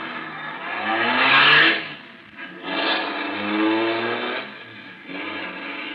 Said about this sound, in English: At the moment that she's sending the big car roaring down the driveway,